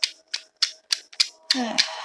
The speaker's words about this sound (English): Okay, I'm going to shuffle the cards again. I wasn't shuffling for a minute because I was just like, let's just talk, Aries.